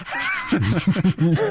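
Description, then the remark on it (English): A person imitates elven panting with a quick run of short, breathy, voiced huffs in an uneven rhythm, fairly loud, after a brief higher-pitched vocal sound. “Does that mean they pant? They pant, yes. Just like, elven panting.”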